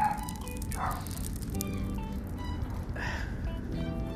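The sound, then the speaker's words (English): A dog barks twice, about two seconds apart, set off by dill seed coming out of a jar, over a steady, busy background of tonal hum and clatter. The barks are not especially loud. “There goes the dill seed out of that jar, and it made the dog bark.”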